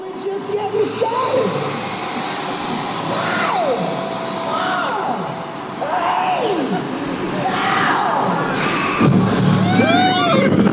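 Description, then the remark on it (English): A thrill-ride launch countdown: a steady, loud crowd roar with a series of swooping rising-and-falling tones every second or two, building to a sharp burst and high riders' screams at the end. “And then they do a countdown before you launch off. So this is that countdown.”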